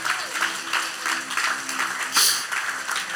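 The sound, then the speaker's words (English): An audience claps its hands together in a steady, even rhythm, the sharp claps blending into a bright, continuous wash at a moderate level, with faint voices underneath. “Come on, clap your hands.”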